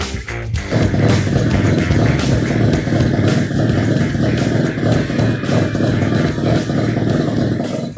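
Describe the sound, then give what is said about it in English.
A loud Mazda RX-7 FD rotary car engine running steadily with a buzzy, rattling drone, its revs rising and falling slightly throughout. No one speaks. “Nice rotary engine. FD, RX-7.”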